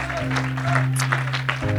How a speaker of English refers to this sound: Come on, now's a good time to clap your hands. It's a good time to lift your voice. It's a good time to praise him.